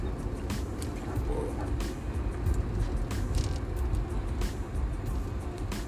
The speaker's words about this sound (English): I'm in the car, so I don't know if you guys can hear the sound of the car, but probably so.